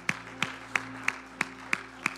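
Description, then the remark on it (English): A group claps hands together in steady unison in praise to the Lord during a church worship service, seven sharp beats at a brisk even tempo, with a sustained low musical tone humming underneath. “Would you clap your hands to the Lord and let's praise him together.”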